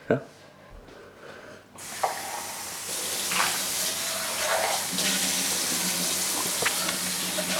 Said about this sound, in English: You're doing dishes during our video?